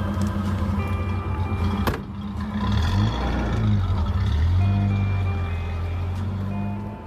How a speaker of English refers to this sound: And I think what we heard there was, I mean, I kind of assumed that was the last time that they ever saw each other and, you know, you hear him drive off.